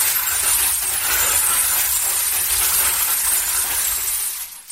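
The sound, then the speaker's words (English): Steady, unbroken cascade of breaking, crunching glass made by turning the crank of a sound-effect prop that moves glass around, loud, with dense rattling shards that keep going for several seconds before tapering off abruptly at the end. “And if I wanted to, I could really bother your cat and just do a continuous glass breaking sound.”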